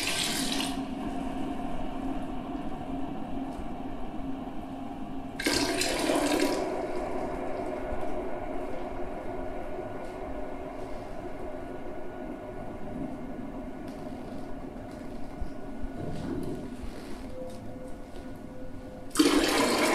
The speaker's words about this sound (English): Oh, now we're like pouring the pot into the glass.